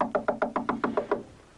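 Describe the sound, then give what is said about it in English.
A rapid, even series of about nine sharp knocks on a woman's door in a scene from a 1982 CBS TV drama, each a hollow mid-pitched rap, ending abruptly and leaving a faint fading tail. No voices are heard. “So she gets out of the shower, enrobed, and answers a persistent knock on her door.”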